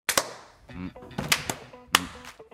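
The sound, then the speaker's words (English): About five sharp, loud hand claps land in an uneven pattern, two quick ones first and then scattered singles, with voices murmuring and talking in the gaps between them. “He's got more clap.”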